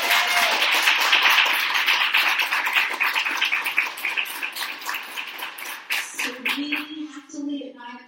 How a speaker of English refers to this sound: So let's give Gloria Browne-Marshall a round of applause.